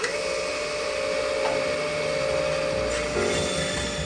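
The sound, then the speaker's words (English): A power sander whirs steadily against wood in a workshop, a continuous motor whine with a gritty rasp that holds fairly loud and even throughout, with no one speaking. “You're sanding, you're nailing stuff together, gluing stuff up.”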